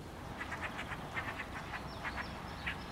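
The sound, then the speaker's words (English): Ducks quack in quick, repeated bursts over a steady outdoor hiss, with a few higher chirps of other birds cutting in toward the end; fairly quiet. “Duck, nature-made.”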